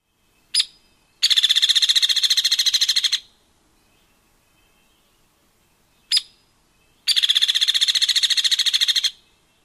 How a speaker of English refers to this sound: Hairy rattle or whinny call does not descend in pitch at the end. Hairy woodpecker rattle is noisier, more monotone, and often longer than downy.